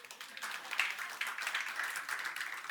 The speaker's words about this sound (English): Give Alan a round of applause.